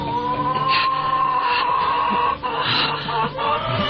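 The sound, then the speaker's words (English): A chicken clucks and squawks loudly in distress, with a continuous, agitated, crying quality running through a few seconds over a dense background hum. “That is a chicken crying.”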